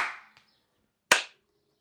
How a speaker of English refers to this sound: I need to push this button. And then I have to say 3, 2, 1, clap.